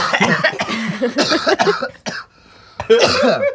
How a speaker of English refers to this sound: Got this cough.